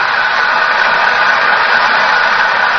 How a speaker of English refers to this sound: Listen to the applause. Yes, undoubtedly she'll sing an encore.